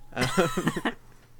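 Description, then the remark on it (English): A dog lets out a quick run of high, strained yelping cries in the background, about five pitched bursts close together, fairly loud, then falls quiet with only faint background noise. “My dog's just kind of screaming in the background at the moment.”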